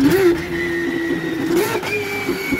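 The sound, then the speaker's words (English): A road car engine screams at high revs, loud, its tone holding steady before a brief dip and jump in pitch as the driver shifts through the gears with the paddle shifter, from first to sixth gear, on empty roads. “No, he actually goes for a COVID strap because there's no one on the roads and he's just smacking gears on the paddle shifter.”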